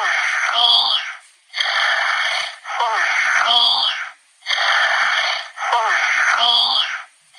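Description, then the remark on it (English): An electronic Hatchimal toy voice honks like a goose, letting out a steady run of loud, harsh, nasal blasts grouped in pairs with brief gaps between them. No one speaks. “It sounds like it's honking like a goose.”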